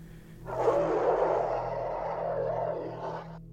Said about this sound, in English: Until out in the distance, I hear a muffled roar.